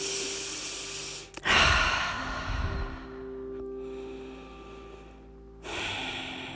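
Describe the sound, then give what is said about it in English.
A slow, deep breath is drawn in and let out during a guided relaxation, a long airy inhale followed by a softer exhale, with a faint steady tone humming underneath. “Keep breathing.”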